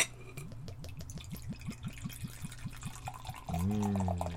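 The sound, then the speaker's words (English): A dark Russian stout aged in tawny port wine barrels is poured into a glass, a rapid glugging rhythm of liquid hitting glass, steady, then a fuller rising fill tone as the pour finishes. No one speaks. “and now the pour.”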